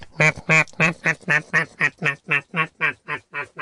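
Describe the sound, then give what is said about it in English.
A duck squawks in a rapid, steady run of about fourteen loud, harsh quacks, evenly spaced, with no talking around it, as it flies down off a wall into a road at children and pecks at their feet and legs. “And she flew right off the wall down into the road and made straight for the children, squawking away in a most terrifying fashion and pecking at their feet and legs.”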